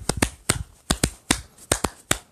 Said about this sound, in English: So you get a hand clap from me.